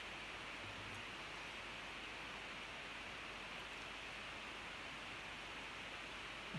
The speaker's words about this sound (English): It's poured a nice golden colour, a little bit hazy. It's got a two-finger foamy white head.